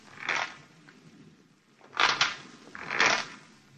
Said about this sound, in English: On the fifth night of our wait, we heard the rocking chair creaking, creaking, creaking.